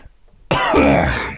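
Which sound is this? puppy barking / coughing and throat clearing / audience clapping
coughing and throat clearing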